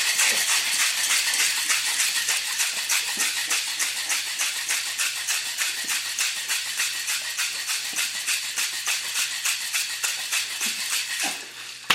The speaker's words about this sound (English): That's a bunch of cracked ice. Let's go ahead and dump that into our shaker. And now it wants me to shake it up? Shake it up fast and hard. Okay, fast and hard it is.